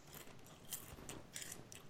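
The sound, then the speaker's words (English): Crunchy chewing of Thai green curry Pringles crisps, a run of crisp, crackly bites and grinding crunches in an irregular rhythm, fairly quiet with no talking. “Fine, I shall put one of these Thai green curry Pringles in my mouth.”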